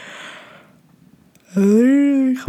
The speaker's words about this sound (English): Wow, I just yawned. Remind me never to drink half a bottle of wine before I get on here.